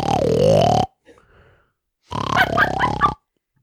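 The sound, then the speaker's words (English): A voice imitates someone snoring a melody like the Mario dungeon music: two loud, raspy, throaty bursts with a wavering, rising and falling pitch like a tune, separated by a brief soft snort. “A couple nights ago, you were snoring that melody.”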